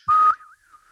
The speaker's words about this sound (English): I was trying to practice my whistling beforehand, but I was trying to do the... it didn't even work again.